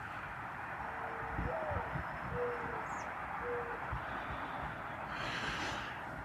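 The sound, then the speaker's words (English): A very common bird, not an owl, gives soft, low, owl-like hooting: three mellow notes, the first slightly rising, spaced about a second apart over a steady outdoor background hiss, with a brief rustle near the end. “So, my story about that sound is that I used to think that was an owl because it, you know, sounds like an owl.”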